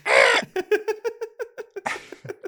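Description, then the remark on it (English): A human voice imitates a rooster: a loud, strained squawk, then a quick run of clucking pulses, a second squawk, and more choppy clucks, fairly loud. “That weird rooster comes back.”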